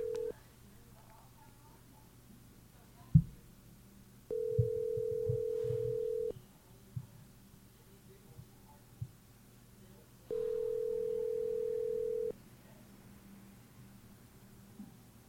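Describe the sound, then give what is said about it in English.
A phone call to a woman rings out unanswered: long, steady ringback tones repeat about every six seconds, with faint handling clicks and low background hum between them. “I'm going to call somebody right now because I have to get their personal opinion on this take.”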